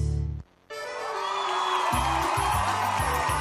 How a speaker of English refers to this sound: Hear the roar of the crowd, or is that the roar of your stomach?